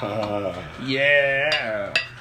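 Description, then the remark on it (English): Bar background noise: a steady murmur of voices with a few sharp, bright clinks of dishes and glassware scattered through it, the loudest clink near the end. “There's some bar noises.”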